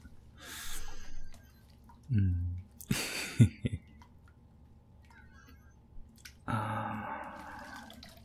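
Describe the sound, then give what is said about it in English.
Bathwater sloshes and splashes in a tub as someone bobs up and down in it, displacing the bubbles: a few short bursts of movement followed by a longer swishing splash, with quiet dripping and bubbling in between. “Yeah, it's a lot of fun when they displace the bubbles.”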